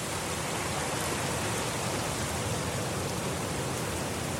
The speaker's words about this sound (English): Raining continued through the afternoon. I could hear limbs cracking in the gathering dark up the valley as wind and water dismantled the fragile boughs of the paulownia forest.